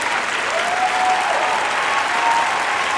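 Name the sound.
applause sound effect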